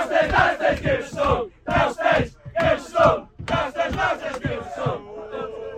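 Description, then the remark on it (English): A loud group of football fans chants in unison on a bus, bellowing short rhythmic phrases in repeated bursts with brief gaps between lines, the raucous chorus fading slightly at the end. “we obviously got interrupted by the raucous bus that we're on.”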